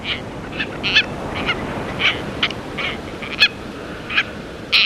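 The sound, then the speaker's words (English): Calls of a tropicbird, a white seabird with a red bill and long tail streamers, ring out in a series of shrill, raspy bursts, about a dozen spaced irregularly, over a steady low rush of wind or surf. “sparkling white seabird with a red spear of a bill and luxuriantly long tail streamers”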